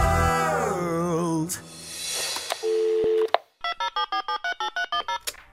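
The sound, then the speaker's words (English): Telephone line tones on the Wow in the World call-in line before the voicemail recording: a short steady electronic tone, then a string of about ten quick, evenly spaced beeps in a bright buzzing pitch, following a burst of warbling, sweeping sounds. “Hi, thanks for calling Wow in the World. After the beep, get ready to record.”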